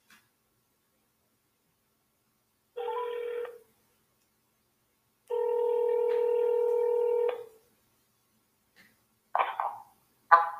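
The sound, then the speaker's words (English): Two clean electronic telephone keypad tones sound as a phone is dialed to call someone, a short beep followed by a longer held one, with a few faint clicks and a brief noise at the end, in near silence. “Let's get her on the phone.”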